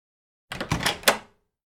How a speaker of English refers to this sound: Can you please not knock so loud?